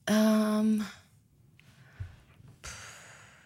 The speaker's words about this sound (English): We're waiting. I can hear you both breathing. It's so weird.